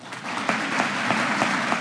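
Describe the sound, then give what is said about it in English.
A crowd claps steadily and gives a standing ovation to Hickenlooper after his line calling for universal background checks for all gun sales: a dense, sustained wash of many hands with a few sharper claps popping out at a roughly even rhythm. It stays loud throughout, with no voices heard. “They clapped and gave him a standing ovation.”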